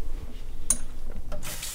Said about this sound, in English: Since the guacamole has a lot of oil in it, we start with cold water and dish soap. So let's do some cold water rinse.